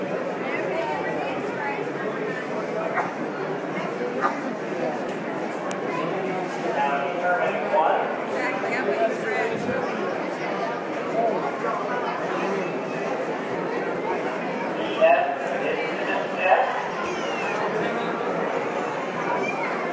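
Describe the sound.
A dense, continuous murmur of many voices from a crowd of an estimated 2,000 to 3,000 people, standing with cell phones raised, steady throughout with occasional louder bursts, plus faint intermittent clip-clop of hooves beneath the chatter.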